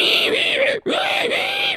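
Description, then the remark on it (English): A voice imitates a pig's frantic squealing: loud, shrill, strained shrieks in two long bursts split by a brief gasp-like break, harsh, with no other talking. “And so you know what happens when you try to pull a pig or you push a pig? They go nuts. They have squealing fits.”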